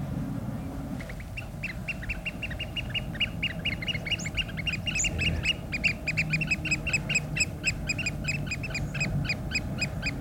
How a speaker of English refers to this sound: Sound so stressed out, oyster catchers. They're beautiful birds. They've got these long orange beaks and just really dapper black and white. Sort of black wings, white belly. Lovely pied plumage.